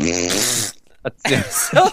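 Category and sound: vocal imitation, vocal imitation of farting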